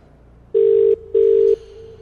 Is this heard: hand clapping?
no